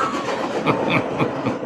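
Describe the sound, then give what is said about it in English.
A freight train rolls past, a loud, steady rumble with a regular clickety-clack of wheels over the rails and a faint hiss, with no voices. “there was a season of irritation with the freight train, but I really like it.”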